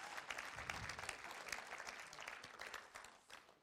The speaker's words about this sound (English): Yeah, give him a round of applause this morning.